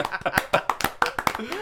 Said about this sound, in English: And scene. And scene. Applause.